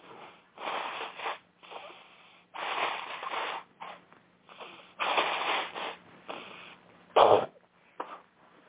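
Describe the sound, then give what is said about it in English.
A series of breathy nasal bursts, someone blowing their nose in several honking pushes with short pauses between, ending in one sharper, louder blast. “All right, let me blow my nose”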